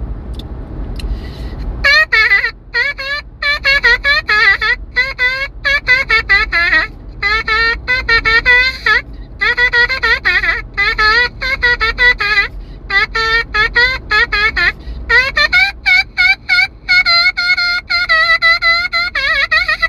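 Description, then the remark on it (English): A buzzy, brassy melody buzzed on a trumpet mouthpiece by a driver in a car on the I-95, loud, moving through short repeated notes and phrases almost without pause over a steady low engine rumble. “Trumpet mouthpiece sounds”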